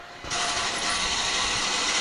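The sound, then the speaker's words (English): A remote control garage door opener for a cave kicks in after a brief pause and runs with a steady, loud mechanical whir and grinding rattle, continuous to the end with no voices. “I like that he has a remote control garage door opener for the cave.”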